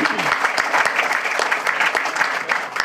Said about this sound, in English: Oh! That does deserve a round of applause.